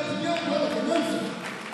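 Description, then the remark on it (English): A crowd claps its hands together in a dense, steady wash that holds at an even loudness throughout, with voices and a tonal murmur blended underneath. “As you are clapping your hands, I said he's making a way for you.”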